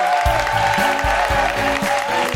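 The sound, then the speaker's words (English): An audience at a live recording of The Guilty Feminist claps and cheers for guest Seyi Akiwowo in a dense, steady wash of applause, while music with a pulsing, rhythmic bass line plays underneath throughout. “Please give a big round of applause for Seyi Akiwowo.”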